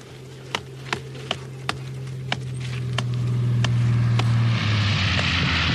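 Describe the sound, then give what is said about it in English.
A handful of sharp, evenly spaced metallic taps from hammering at a tin, then an airplane engine drone swells steadily into a loud, low roar as the plane swoops low overhead across a moor. “As she hammers at the tin, an airplane swoops low over the moor, shouting orders through a loudspeaker.”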